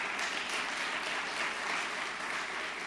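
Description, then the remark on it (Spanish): A crowd at a religious service gives a big round of applause to the Lord, dense overlapping claps forming a continuous, even wash of sound that holds at a fairly constant loudness throughout, with no voices standing out. “Denle un gran aplauso al Señor, hermano.”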